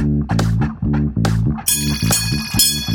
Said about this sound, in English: Now, that bell is our signal.